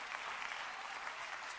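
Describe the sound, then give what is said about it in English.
Dense, steady applause from an audience clapping their hands in praise to the Lord, many hands clapping together in a continuous sustained wash with no voices standing out. “Come on, clap your hands to the Lord and give Him praise right now.”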